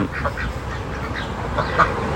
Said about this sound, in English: And they're more afraid of me. Look at that. But they're just some ducks, man.